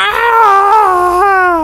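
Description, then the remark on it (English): A voice imitates a monster's frenzied shriek: one loud, sustained, high-pitched wail lasting over a second, wavering slightly and dipping in pitch before a brief upward lift near the end. “So the one that got hit by the lightning bolt, number two, who is looking distinctly frazzled, comes, first of all, goes into a shrieking frenzy.”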